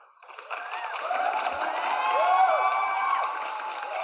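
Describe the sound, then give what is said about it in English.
A crowd cheers and applauds, played from a soundboard, with scattered whistles and shouts over a dense, steady wash of clapping that swells in after a brief quiet start and carries loudly to the end. “Yeah, loads of rounds of applause.”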